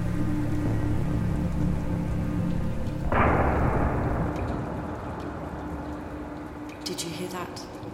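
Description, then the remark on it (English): Steady, heavy rain hisses throughout, then a loud thunderclap from a storm overhead bursts in partway through and rolls away slowly beneath the downpour. “And this is the storm overhead.”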